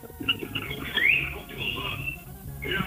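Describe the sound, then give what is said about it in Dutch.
A cockatiel sings a run of chirpy, warbling whistles with a bright rising sweep partway through, moderately loud over a low background rumble. “Ik ken die valkparkeer.”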